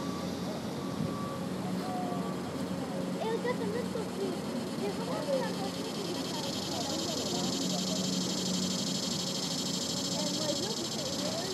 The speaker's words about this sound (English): Well, that cicada is really close.